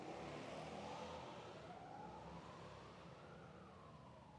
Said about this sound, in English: If you're visiting with us today, Conshohocken once a summer has Motorcycle Sunday, and they drive through with sirens and things like that.